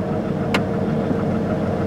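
A car engine idles with a steady, low rumble that holds an even level throughout, broken only by one brief sharp click near the start, as the car stops at a checkpoint.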